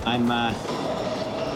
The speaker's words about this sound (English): I'm in the subway. Hold on. I'm just about to stop here.